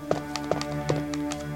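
A hamster, one of several, stirring and shuffling in its cage: several light, irregular taps and clicks over about a second and a half, with a steady low hum in the background and no talking.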